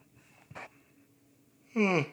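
A person takes a quick sharp breath, then lets out a loud, drawn-out voiced yawn whose pitch slides downward, with no talking.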